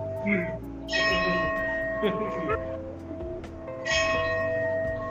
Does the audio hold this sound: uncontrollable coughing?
no